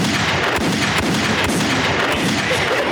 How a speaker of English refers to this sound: Nigga, can we get a gunshot for that shit?